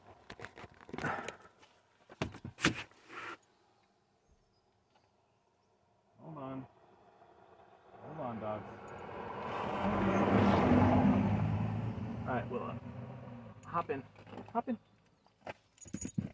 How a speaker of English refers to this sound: Hold on, we gotta deal with a passing car.